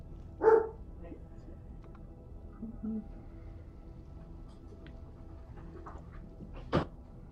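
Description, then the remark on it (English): A single sharp dog bark rings out near the start, fairly loud, followed by quiet with faint background noise and a brief knock toward the end. “Sorry guys, I just have to go with my dog.”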